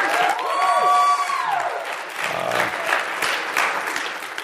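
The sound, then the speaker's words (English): A crowd claps steadily in a dense, continuous patter for several seconds, with a high whoop or whistle rising over the applause near the start, applauding the tech worker as he stands in the balcony, at a chapel gathering held in the Wollaston Church of the Nazarene facility. “As he stands in the balcony to receive your applause, it's very humble of you,”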